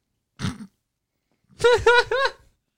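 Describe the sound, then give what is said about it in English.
A French bulldog gives a short, low snort-like grunt, then after a pause lets out three quick whiny, warbling yowls in a row, fairly loud, with no one talking. “It was a dog. It was a French bulldog.”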